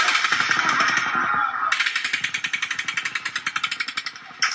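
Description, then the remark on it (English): A sustained burst of automatic gunfire, the third burst fired by Paddock at a crowd, spraying bullets around the area: rapid, evenly spaced cracks rattle on for several seconds, turning sharper and louder partway through before cutting off abruptly. “But then a third burst of fire opens up.”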